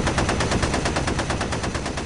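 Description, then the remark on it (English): Rapid, sustained bursts of automatic gunfire rattle continuously in a shootout at a manor, loud and dense, with shots firing in a fast repeating rhythm and no voices. “The roar of the engine quickly blocks out the gunfire, and Sally leaves the shootout in the manor behind her”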